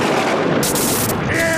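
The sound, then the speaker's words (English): A loud, sustained crash of thunder from a brewing storm, with sharp crackling bursts of lightning in the middle over a constant roaring rumble and a thin electrical whine rising near the end. “Come, thunder! Strike, lightning, strike!”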